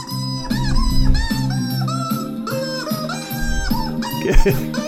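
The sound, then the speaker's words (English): Chicken clucks pitched into a bouncy melody over a steady backing beat and bass, loud and continuous, with the clucking notes rising and falling like a sung tune. “Wait till you hear the chicken hit the high note.”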